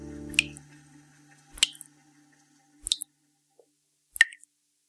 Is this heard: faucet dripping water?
yes